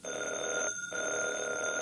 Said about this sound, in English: Good heavens. If I hadn't heard it with my own ears. Heavens, did that phone ring? Yes.